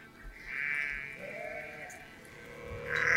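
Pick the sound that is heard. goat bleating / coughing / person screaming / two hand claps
goat bleating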